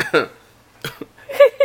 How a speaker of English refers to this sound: I had something in my throat. Okay. I can't even cough. I was already looking at you before you coughed.